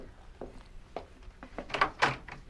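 A front door is opened for an evening caller: a few soft knocks and clicks of the latch, then louder rattling thuds as it swings, with no one speaking.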